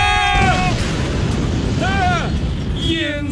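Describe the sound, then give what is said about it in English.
A loud, sustained explosion sound effect, a dense rumbling roar that fills the whole moment, with excited voices whooping and exclaiming over it. “That's the explosion right there.”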